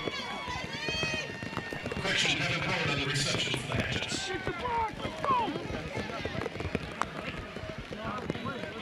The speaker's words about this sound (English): If it sounds like you're hearing popcorn, that's actually the rain hitting the helmets and pads of all the Badax players out there.